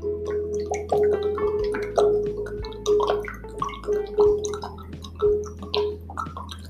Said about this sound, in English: If you heard that, that was me drinking water.